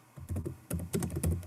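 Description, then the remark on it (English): Rapid clicking of keys on a computer keyboard, fairly quiet, in two quick bursts separated by a brief pause, with no voices. “Oh, she's typing.”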